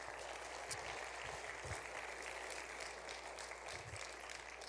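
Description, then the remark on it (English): A church audience claps steadily for several seconds as a guest speaker comes up, a dense, even wash of many hands with no voices standing out, holding at a constant level throughout. “give him a round of applause as he comes.”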